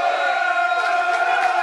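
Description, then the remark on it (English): A football crowd of over 1,000 travelling Lions supporters chants together in sustained, loud unison behind their team, voices blending into a steady droning roar with no breaks across the short stretch. “So the crowd doing their best to get behind their team.”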